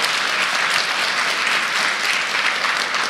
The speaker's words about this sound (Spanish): Si le quieren dar un aplauso al Señor, aleluya.